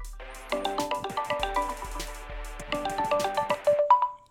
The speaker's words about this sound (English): So let's call my boy, get him on the fucking phone, and get this shit going. Get the motherfucker answers. Let's see.